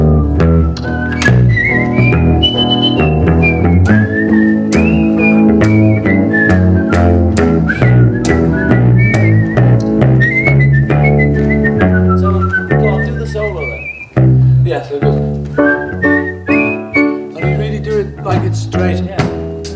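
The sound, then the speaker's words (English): People whistle a melody during a song rehearsal, the tune gliding up and down over a full band backing with bass and rhythmic percussion, loud and continuous, pausing briefly near the end before resuming. “Is still keen to control what everyone plays, or in this case, whistles.”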